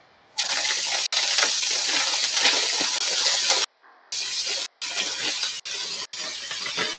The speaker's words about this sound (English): Alrighty. How's that sounding? How's that sizzling? It's sizzling alright.